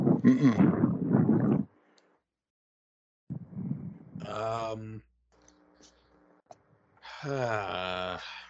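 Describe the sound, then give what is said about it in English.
Three loud bursts of breath blowing straight into a microphone, rumbling and distorted, with short silent gaps between them; the later puffs carry a faint voiced, groaning edge. “Someone's blowing right into the mic. Who's breathing?”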